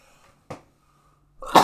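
A single loud sneeze: a short sharp intake of breath, a brief pause, then an explosive burst of air. No talking.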